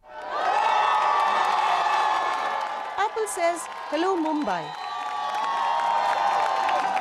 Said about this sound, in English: Amidst loud cheering, selfies, and big crowds of fans and loyalists.